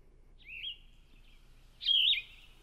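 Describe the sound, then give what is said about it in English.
A yellow-throated vireo singing two short, burry, buzzy high-pitched phrases separated by a pause; the first is fainter and the second louder and harsher, with no talking. “And again, that's the yellow-throated vireo. Let's listen to that song one more time, if we could.”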